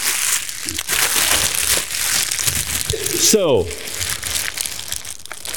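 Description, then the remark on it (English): Continuous crinkling and rustling of plastic-wrapped paper goods as a heavy bucket holding paper towels, toilet paper, a first aid kit and garbage bags is handed over and shifted about, with a man briefly speaking partway through. “this is a bucket. It has paper towels and toilet paper and a first aid kit and garbage bags in it.”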